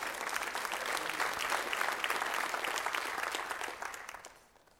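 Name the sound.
audience clapping and applauding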